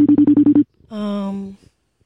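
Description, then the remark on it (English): A phone call ringing out: a quick burst of about six pulsing electronic beeps, followed by a longer, steady buzzing tone that sags slightly in pitch before cutting off. “Let's see if he didn't pick up. Oh. Let's call him again.”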